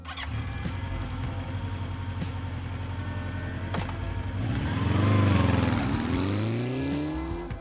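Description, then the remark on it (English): A very fast sport bike engine runs at a steady, rumbling idle, then revs up in a loud rising swell around the middle before settling back down. Nobody speaks. “So I kind of went back to two wheels via a motorcycle, and I got myself a really, really fast sport bike.”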